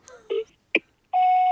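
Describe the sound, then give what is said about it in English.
Phone dialing tones as someone calls a man: a couple of short electronic keypad beeps, then a longer steady tone that holds until the end. Clear, with no talking. “Probably call him.”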